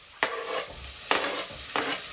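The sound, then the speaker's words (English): Pieces of half a fresh, diced green pepper drop into a hot frying pan with three sharp bursts of sizzling, each flaring up then settling into a steady, hissing crackle of oil. No one speaks. “Goes half a green pepper.”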